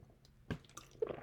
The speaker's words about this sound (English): I'm still schmoiling, so I'm going to just take a little drink.